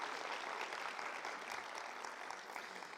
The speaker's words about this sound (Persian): میخوام که از عزیزان بخوام که برای شما دست بزنم و شما رو تشویق کنم و شما رو اکنالج میکنیم.